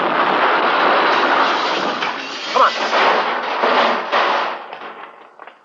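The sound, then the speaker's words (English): A car crash: a loud, sustained roar of grinding, crunching noise with a few sharper impacts partway through, then it dies away. A man's voice speaks briefly over the din. “Crash knocked them cold.”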